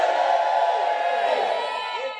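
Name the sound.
audience shouting and cheering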